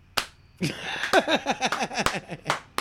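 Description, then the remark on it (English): A slow clap: sharp, loud single claps spaced about a second apart, speeding up slightly toward the end, with wavering vocal sounds running underneath. “We haven't had a slow clap on here in a fucking while.”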